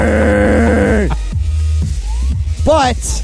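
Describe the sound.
A man's voice imitates a Florida cow, starting with a long, loud, drawn-out moo that slides down in pitch, followed by a few shorter, wavering bellowing calls.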